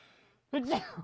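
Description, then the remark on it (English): A single sneeze: a soft breathy intake, then a sudden loud voiced burst that wavers in pitch and trails off within half a second. “Bless you.”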